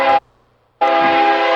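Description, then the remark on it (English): Two loud train horn blasts: a short one, a brief pause, then a longer sustained blare with a rich, harmonic tone. Nobody speaks. “That's the sober train. That's what it sounds like?”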